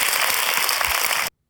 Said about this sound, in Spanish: Si Dios habló, da un aplauso al Señor, que Él se lo merece. Amén. Qué tremendo.